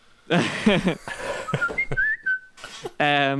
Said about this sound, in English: Please whistle if you've owned an electric car. That was me whistling, so I'm the only person here who has owned an electric car. And let me tell like, you, that sounded like the text tone from when you bought a Samsung.